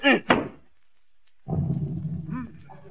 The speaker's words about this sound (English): Didn't y'all say beat it? Oh, I meant the carpet. Yes, sir. Now get your back into it this time.